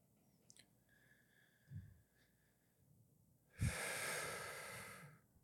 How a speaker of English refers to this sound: I started like breathing weird and I started to get the hiccups. Yeah, I saw that. You were trying to cut back the hiccups.